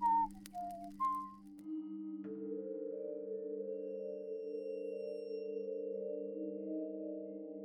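A few short rising whistle chirps, then a steady, unbroken whistle tone that holds at an even, fairly loud level for several seconds, with no voices present.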